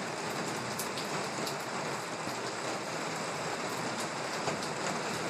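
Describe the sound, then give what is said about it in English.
Heavy rain lashes down on a summer morning in a steady, dense hiss, loud throughout, with scattered sharper drops pattering on a surface. No voices. “And listen to this, it was raining.”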